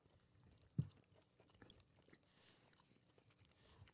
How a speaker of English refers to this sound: Hopefully you guys are picking up the chewing. Oh, yeah. That's nice. I'm going to have to do some serious post-production work to amplify the chewing.